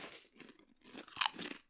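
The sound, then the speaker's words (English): Chicken-and-honey-flavoured crisps being tasted, crunched and chewed: a series of dry, crackly bites in uneven bursts, with one sharper snap near the end, fairly soft overall and with no talking. “Right, let's have a taste of it.”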